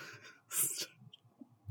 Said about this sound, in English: I just coughed directly into the microphone. We're off to a great start.